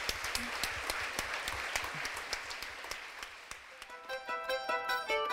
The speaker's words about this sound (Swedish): Ska vi ge en stor applåd?